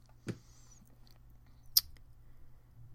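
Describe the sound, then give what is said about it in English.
A crunchy mattress crinkles twice, two brief crisp rustles about a second and a half apart, the second sharper, over a quiet, faintly humming background with no one talking. “Crunchy mattress.”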